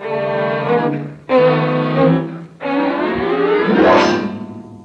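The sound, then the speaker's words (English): A car engine revs steadily and loudly as the car is driven down the street, dropping briefly twice as if shifting gears, then climbs again with a rising whine. No one speaks. “You drive, fella.”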